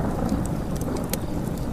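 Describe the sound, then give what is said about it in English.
Heavy, steady rain pours down during a storm at night, with a deep continuous rumble of howling wind and thunder underneath and sharp drops spattering. No voices. “His voice echoed throughout the night, but the only reply he received was the howling of wind as the storm continued to rage onward.”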